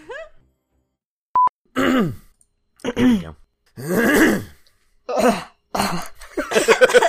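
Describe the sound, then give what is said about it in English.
Loud throat clearing and coughing in a series of short, rough bursts with brief pauses between them; a short electronic beep sounds early on. “No, I actually have to cough.”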